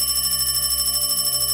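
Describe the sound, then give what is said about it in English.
An old-style telephone bell rings continuously in a hallway with a fast metallic trill, loud, lasting the whole moment without any voices. “The phone rang again and we shot up.”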